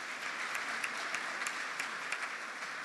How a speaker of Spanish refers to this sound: Damos un aplauso